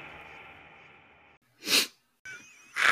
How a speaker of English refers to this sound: I was just going to leave the fucking sniff. I think I might have to edit that.